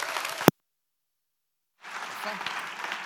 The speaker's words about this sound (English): Can you give a warm round of applause